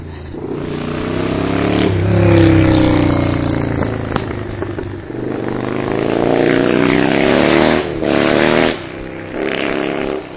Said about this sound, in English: I love a noisy motorbike in Epping Forest.